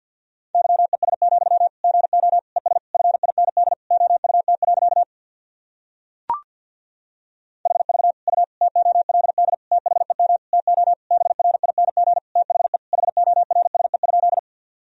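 Rapid Morse code at about 50 words per minute sending sentences built from the top 500 words and abbreviations: a single steady mid-pitched tone keyed in fast dots and dashes, in two long runs split by a pause with one sharp click.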